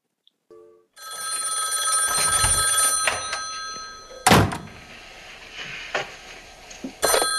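A telephone bell rings steadily for several seconds on a played recording of a phone call, a bright, sustained metallic trill, interrupted by a couple of sharp thuds near the end; no one speaks.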